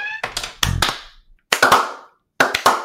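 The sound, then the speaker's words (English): Sharp, crisp hand claps arrive in three short clusters separated by pauses of about half a second, each burst loud and snappy with a brief ringing tail; no one talks. “That deserves a slow clap.”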